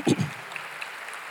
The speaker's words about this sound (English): So we are blessed. Amen. You can clap for that.